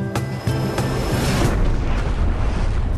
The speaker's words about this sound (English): Oh, my. A UFO has crashed in my backyard. Has taken out my azaleas and destroyed my bird bath.